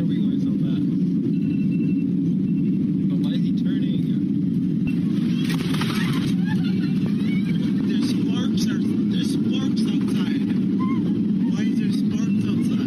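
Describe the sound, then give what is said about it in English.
Passenger jet landing hard in Santa Ana during Tropical Storm Hillary, recorded by a passenger on board: a loud, steady roar of engine and cabin rumble throughout, a brief harsher surge of noise midway, and faint muffled voices underneath. “Here's a clip from footage that a passenger took during the landing.”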